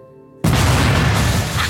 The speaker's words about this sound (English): Explosion detected in Sector 3, ma'am. I've locked down the area.